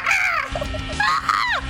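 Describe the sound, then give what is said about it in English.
Someone lets out two shrill, squawking calls in quick succession, imitating a parrot or crow, each with a wavering, sliding pitch. Fairly loud, over a low background rumble. “You sound like a parrot.”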